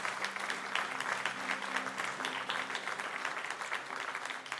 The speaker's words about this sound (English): And I just got to tell you, there's hands going up all over. Could we just celebrate, church, and just clap right now? I know it's like this amazing moment, but it's just this reality of God's goodness.